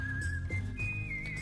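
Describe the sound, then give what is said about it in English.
A bright, steady whistled melody carries over a warm low instrumental backing, the pitch stepping up and down in sustained notes, used as background music for reading the news, with no one talking. “Need my news reading music. Come on in, Whistle Man.”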